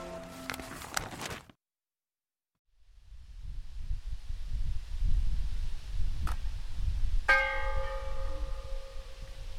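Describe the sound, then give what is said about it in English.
A burst of chiming bell tones from bells on top of brick chimneys, 26 bells on 26 chimneys spread across a field, a short silence, then a steady low rumble before a single bell strike rings out with bright, lingering overtones. No one speaks. “That ringing sound is a bell on top of a brick chimney, and there's 26 bells and 26 chimneys with the outline of a house spread across a beautiful, gorgeous field.”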